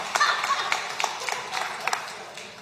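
A small group claps, a steady patter of sharp, overlapping hand claps with a few louder smacks standing out, no voices over it.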